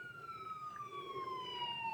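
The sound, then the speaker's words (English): A police siren wails in a long, slowly falling tone, heard from some distance over a low traffic rumble and growing slightly louder as it draws nearer. “Police sirens can be heard coming nearer from a distance.”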